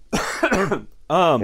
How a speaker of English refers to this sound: Now I'm going to have a coughing fit. It's not related.